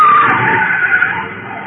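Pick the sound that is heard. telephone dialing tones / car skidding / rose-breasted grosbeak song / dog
car skidding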